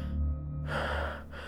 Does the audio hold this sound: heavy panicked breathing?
yes